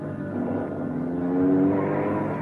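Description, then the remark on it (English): A car engine roars as a fleeing man drives off, its pitch climbing steadily as it revs and accelerates, then holding at a loud, strained drone through the end. “He's getting to that car,”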